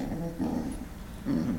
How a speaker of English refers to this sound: But there's four wolves! How long is this gonna take?